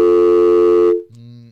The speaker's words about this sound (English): Talk amongst yourselves. Dialing the phone.